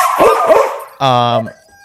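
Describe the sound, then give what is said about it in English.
Dogs bark, a burst of rough, overlapping yaps followed by one longer, high, ringing bark that cuts off abruptly, with some voices mixed in. “Those are dogs. My dog.”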